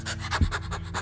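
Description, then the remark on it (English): A person imitates a tired dog with quick, breathy pants, inhaling and exhaling through the nose as a relaxing breathing exercise, about five or six short airy bursts in a steady rapid rhythm, with no talking. “Just, you could even do it as a dog. Like when he's tired or she's tired or it's tired.”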